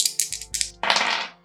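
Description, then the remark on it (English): Two eight-sided dice (2d8), rolled for a persuasion roll in a game, clatter and rattle across a hard surface in a quick burst of bright clicks, followed by a longer rolling rattle that tumbles for a moment before settling. No one speaks. “Luckily, I didn't fumble because of my very high dice, but I rolled pretty darn close.”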